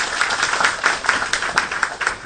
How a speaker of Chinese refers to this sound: 下面呢，就让我们心怀感恩，掌声齐请索达吉教授为我们进行开示。来，掌声有请。